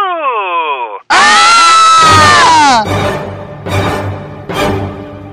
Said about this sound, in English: Ah! Hey, calm down. Why are you guys screaming?